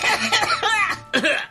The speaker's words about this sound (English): Okay, who coughed?